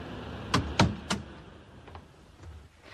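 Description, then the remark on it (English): A car door opens and shuts: three quick, sharp clunks and latch clicks in the first second, followed by a couple of fainter knocks against quiet background noise. “Get in the car, we can't talk here.”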